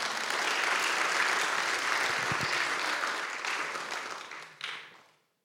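A crowd applauds steadily with dense, continuous clapping at a fairly loud level for several seconds, then the applause thins out and fades away to silence.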